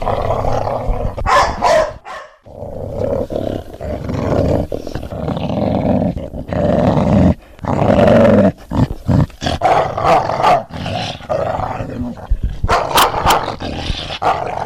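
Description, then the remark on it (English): A pet puppy dog growls deeply and almost nonstop, breaking into sharp, loud barks every few seconds, with no one talking over it. “Ah, that's my little lovely puppy dog.”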